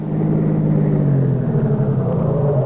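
A taxi cab's engine idles outside a door with a steady, low rumble that runs on without pause, its deep harmonic hum shifting slightly in pitch as it runs, with no voices over it.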